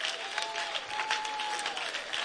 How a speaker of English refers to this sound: No, clap a little faster than that even. Now some of you won't even clap.